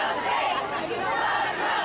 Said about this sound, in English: Waves of anti-Trump marchers rolled through hundreds of towns and cities coast to coast with one clear message.